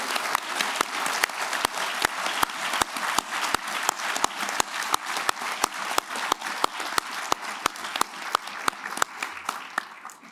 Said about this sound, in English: And so I would like for us all simply to give a round of applause to anyone in the room who might have been a veteran.